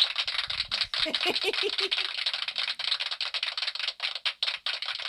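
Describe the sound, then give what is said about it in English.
Dense, steady applause from a sound machine, a continuous crackle of many hands clapping that runs the whole time, with a brief low voice murmuring underneath near the start. “It's a very long applause.”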